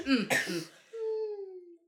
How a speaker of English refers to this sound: Sorry, I had a little coughing fit.